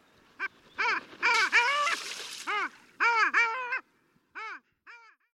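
A long-tailed duck gives a string of nasal, yodeling calls, some rising and falling in quick doubled bursts, then a few spaced single notes. The calls are clear, with no talking.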